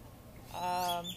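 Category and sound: bird, bird calling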